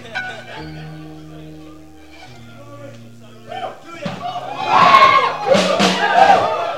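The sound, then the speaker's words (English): Sustained keyboard chords play softly, then a large audience erupts into loud, excited shouting and cheering that swells and stays strong to the end, with individual voices crying out above the crowd. “Why are you shouting?”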